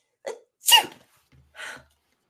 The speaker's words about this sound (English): You wouldn't be sneezing if you weren't cold.